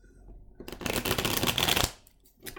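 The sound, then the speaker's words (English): A deck of cards being shuffled for a card reading, a dense burst of rapid riffling and flicking that lasts about a second, ending in a soft tap with no voices. “Shuffling the cards.”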